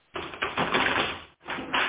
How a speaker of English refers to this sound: Let's knock, knock, knock on those cards and see what comes out for our lovely Patricia.